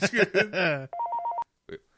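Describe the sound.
A voice speaks briefly, then a telephone rings once with a rapid warbling electronic trill, clear, followed by a short pause and a faint click.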